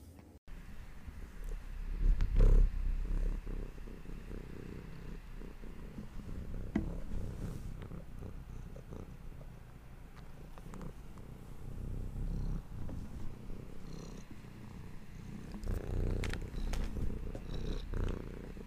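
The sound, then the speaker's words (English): The cat Luna purrs steadily into the microphone, a low continuous rumble with a few soft bumps and rustles, lasting nearly twenty seconds with no voices. “That was Luna purring into the mic.”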